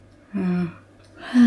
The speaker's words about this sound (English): Having a yawn. Yeah, I'm tired.